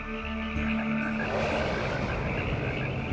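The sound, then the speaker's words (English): A dense chorus of frogs and bullfrogs croaking together in Egypt, with deep sustained bullfrog drones beneath a busy, continuous layer of overlapping chirps and croaks, fairly loud and steady throughout. “The land echoed with the croaks of frogs and bullfrogs.”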